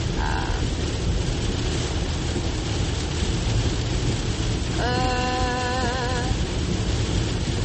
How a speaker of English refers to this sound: I'm going to go 60. A nice, nifty 60. For comparison, usually on this road, I go about 78. So I'm going 18 miles under what I usually go. That's how much rain is pouring down.